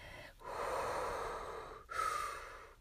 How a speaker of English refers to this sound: That's me breathing, trying to breathe long.